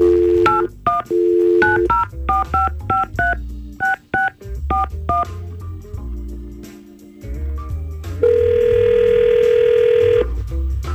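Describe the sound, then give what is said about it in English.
A quick run of touch-tone keypad beeps dials a number, then a steady telephone ring tone hums for about two seconds. Loud, with no voices, as a radio station phones a woman. “So let's try to get her on the phone and hopefully get poor Troy some answers.”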